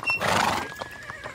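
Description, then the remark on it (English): A horse waiting to race at Kallang Betting Centre lets out a loud whinny that rises and fades, followed by a few hollow hoof clops as it shifts about. “The centre smelled of horse shit, quite literally, from the horses waiting to race.”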